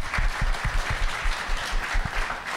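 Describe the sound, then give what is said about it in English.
Loud, steady applause from an audience during a sermon, given to God, a dense wash of many hands clapping at once with low thumping beats running through it, sustained without pause for a few seconds. “You can give God a round of applause for that.”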